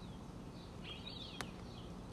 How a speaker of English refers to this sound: As you can hear, the birds are chirping. The sun is going to come up.